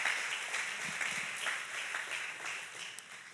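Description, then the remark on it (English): A crowd applauds the Lord steadily, a dense wash of many hands clapping at once that stays loud and even for the whole stretch, with no voices rising above it. “Give a strong round of applause to the Lord.”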